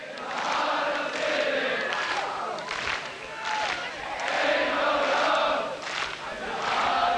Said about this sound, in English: They're just clapping and everyone's singing along.